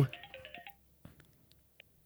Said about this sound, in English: Is my phone ringing? Yeah. Are we getting a call? We're getting a call. It's happening.